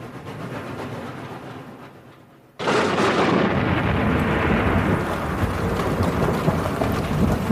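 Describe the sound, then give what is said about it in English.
A steam train rumbles steadily, fading briefly before a sudden loud burst of hissing steam, then a sustained roar of the engine standing at the platform. “Will meet the 7 o'clock train and will take no steps until you arrive.”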